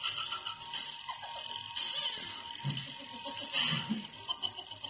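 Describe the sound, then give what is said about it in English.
An alarm clock rings continuously with a shrill, high-pitched electronic tone that holds steady for several seconds, fairly loud, with some muffled background noise underneath. “Renegade clock.”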